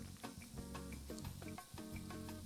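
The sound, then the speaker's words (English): A carbonated drink fizzes with a steady, crackling hiss, broken by repeated sharper bursts of bubbling over about two and a half seconds. No one speaks. “You hear that delicious fizz.”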